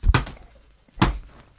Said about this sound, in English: I mean, you can use this also for when someone drops a fucking warhammer and also when the ban hammer needs to be dropped.